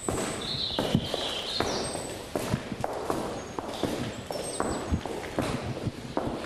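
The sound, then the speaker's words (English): A farmer's own footsteps echo through his empty milking parlour on a dairy farm in Limerick, a steady walking rhythm of hard heel strikes on concrete, fairly loud, with faint birdsong chirping in the background. “Did you ever hear the sound of your own footsteps in this parlour before?”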